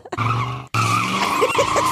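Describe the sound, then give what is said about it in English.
Loud tires squealing as two cars skid, a sustained screech with a brief cut near the middle, then wavering high-pitched squeals continuing over engine noise, harsh, with no talking. “Two cars.”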